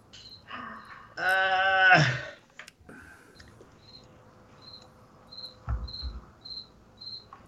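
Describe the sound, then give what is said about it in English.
A cricket chirps in a steady, evenly spaced series of short, high-pitched pulses, following an earlier brief burst of louder, buzzy tonal noise. No one speaks. “No, the cricket is still alive.”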